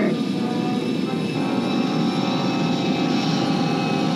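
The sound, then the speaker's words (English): A spaceship engine drones steadily as the ship powers down while being pulled in by a tractor beam, a dense, rumbling deep-bass hum with layered mechanical tones holding at an even, fairly loud level throughout, with no other sounds standing out. “When the Falcon is powering down, when they're getting pulled in with the tractor beam, there's a Millennium Falcon super bass.”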